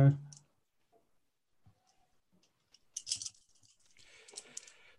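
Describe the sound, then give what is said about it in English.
After a brief murmur and a quiet pause, a sharp cluster of clicks erupts, then a loose, tumbling rattle of small hard objects tapers off, dice clattering across a surface. “Anyway, roll your dice.”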